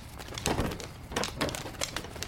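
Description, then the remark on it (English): Turkeys gobble in a series of rough, rattling bursts, four or five calls overlapping at a steady loudness, with no talking. “Emma, we have to walk the turkeys out.”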